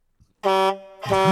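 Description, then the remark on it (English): A loud truck horn blasts twice: a steady, harmonically rich blare, a brief dip, then a second honk that swells back up. A faint low thump comes just before it. “That's our Big Mac truck because we're all Republicans here.”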